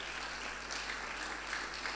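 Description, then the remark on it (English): A crowd claps steadily together, a dense, continuous patter of many hands at a moderate, even level with no voices over it. “Are you clapping or you are trying to clap?”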